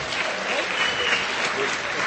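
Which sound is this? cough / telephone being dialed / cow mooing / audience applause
audience applause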